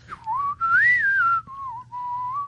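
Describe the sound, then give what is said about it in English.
A clear whistled melody of a pop tune, four smooth phrases gliding up and down in pitch with brief gaps between them, no talking. “I like the whistle.”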